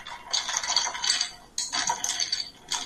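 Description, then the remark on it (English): Ice cubes clink and rattle against a glass as a lime cordial and lemonade drink is stirred, a bright, continuous jingling in two bursts with a short pause between, and no talking. “We're stirring it so as not to knock the bubbles out.”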